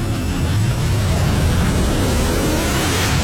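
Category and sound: vehicle, car engine starting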